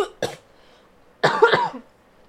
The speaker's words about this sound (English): I'm gonna cough.